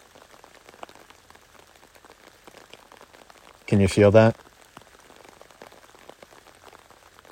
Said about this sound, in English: Oh, the rain just picked up.